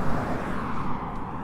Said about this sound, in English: A lot of cars right here.